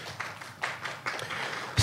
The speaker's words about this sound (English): As officer liaison to this task force, first and foremost, I'm very proud of this task force and the work that they did on this program. I think we should give them all a round of applause.